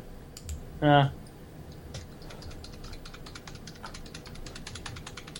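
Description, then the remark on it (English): Steady clatter of someone typing a message into a box on a computer keyboard, quick irregular key clicks running through the whole stretch, with a short voiced sound from someone near the start. “The box that you should be typing in is the other one.”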